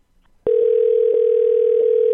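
A telephone dial tone, heard while calling back the Extended Stay hotel in Phoenix Mesa West, starts abruptly after a moment of quiet, then holds as a loud, steady, unbroken hum at one pitch, with a few faint clicks underneath.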